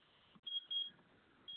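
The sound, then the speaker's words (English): Short, high electronic beeps from a timer repeat in a quick pattern, three distinct tones with brief gaps, fairly quiet against a faint background hiss. “Sorry, I'm having some timer issues.”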